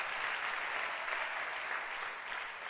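audience clapping hands

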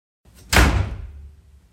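door slamming shut

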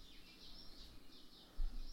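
birds chirping outside

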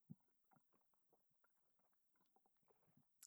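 drinking water

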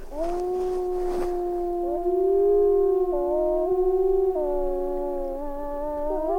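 wolves howling

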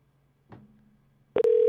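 phone call ringing tone

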